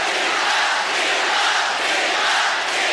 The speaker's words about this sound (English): At the 2008 Olympics in Beijing, she upset Venus Williams in the quarterfinals. Yeah! And the crowd went wild.